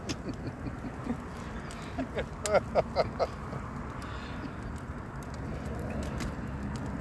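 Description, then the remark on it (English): A bonfire burns with a steady, rushing roar, broken midway by a quick run of four or five sharp crackling pops; faint, indistinct voices murmur in the background. “But it is a good bonfire.”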